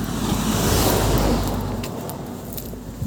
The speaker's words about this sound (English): Oh, here we go. This is going to be good for the recording, just car after car. Or van, as it may be.